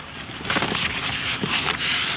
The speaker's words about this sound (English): Sounds like some very intense shuffling to me. Back and forth. Then Harpo relents, picks up the boulder, carefully polishes it apologetically, and then drops it again. But this shuffling has a purpose.